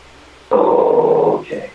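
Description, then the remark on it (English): A person lets out a loud, sustained growl in imitation of a bear, lasting about a second, then a brief softer vocal grunt follows. “Don't growl at me like a bear.”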